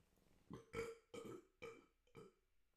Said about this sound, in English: I got a burp. Hold on.